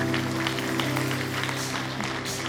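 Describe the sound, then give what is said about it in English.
A crowd claps hands continuously while praying, in a dense, overlapping patter, fairly loud, with steady sustained keyboard-like tones humming underneath throughout. “I want you to clap your hands and begin to pray against those things.”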